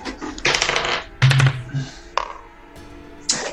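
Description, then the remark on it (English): Several dice clatter and rattle across a hard tabletop in a few separate bursts as players roll initiative in a tabletop role-playing game, each a quick sharp tumble that stops abruptly, with no voices over them. “So I'll have everybody roll initiative.”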